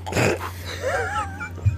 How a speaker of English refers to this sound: My dog just growled when I said that.